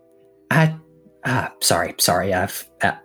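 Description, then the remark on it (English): A voice performs a loud, strained howling laugh at a wooden sign on a door, then breaks it into a series of forced coughs and throat-clearing bursts to disguise it: about five sharp outbursts separated by brief pauses. “lets out like a howling laugh at this that he desperately turns into a cough.”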